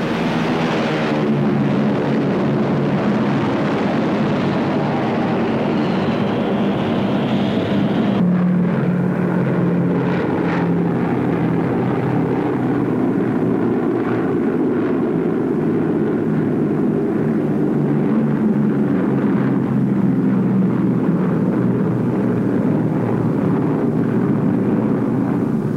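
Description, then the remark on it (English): A steady, loud drone of C-47 transport planes' propeller engines in flight as they tow troop gliders, with a deep rumbling hum and layered harmonic tones that shift slightly in pitch, continuous throughout with no talking. “Giant C-47 transports, towing troop gliders, demonstrate how a single plane can hurl three times as many fighting men against the enemy.”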